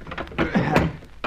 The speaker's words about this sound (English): Anyway, in here, empty freezer. I'd like you to see it. Of course, I am most interested. Massive doors, these.